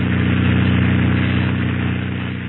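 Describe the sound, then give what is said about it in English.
A small airplane engine drones steadily as it taxis on the ground toward a shack, a loud, continuous buzzing hum with a low, even pitch and no voices over it. “Now we'll taxi over to that shack and give it a look-see.”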